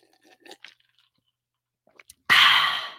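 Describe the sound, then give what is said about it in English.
A few small wet mouth clicks, then a loud, big gulp of a drink taken on purpose for dramatic effect, with a breathy, hissing rush that fades over about half a second. No one speaks. “So on that note, I'm going to take a nice big gulp for dramatic effect, and we're going to get this show on the road.”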